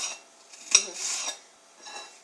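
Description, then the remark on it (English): A knife chops a white onion on a cutting board: one sharp knock of the blade followed by soft scraping and shuffling strokes, fairly quiet, with no one talking. “So I'm chopping up a little onion, excuse me.”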